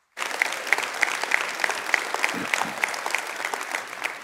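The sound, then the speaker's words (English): A crowd applauds steadily, many hands clapping in a dense, continuous patter with a few sharper claps standing out at a regular pulse, fairly loud and without any talk. “It's interesting that you clap, isn't it?”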